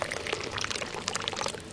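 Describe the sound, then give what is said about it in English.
Tea is poured into a cup, a steady bright trickle with fluttering splashes that runs unbroken for about two seconds, with no voices over it. “And pour into your cup.”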